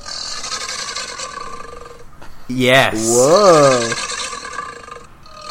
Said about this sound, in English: I'm going to play a I'm gonna play an alligator growl for us here. Okay.